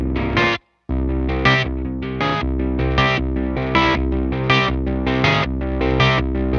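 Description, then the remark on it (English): A heavily effected electric guitar, played through an effects pedal, plays a chordal, keyboard-like riff with a warm, slightly distorted, Wurlitzer-like tone and rhythmic stabs. It cuts out briefly near the start, then continues steadily with no talking. “That sounds so much like a keyboard in a way.”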